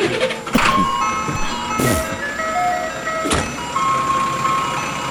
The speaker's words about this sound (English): So he's chasing an ice cream truck. Yeah, right.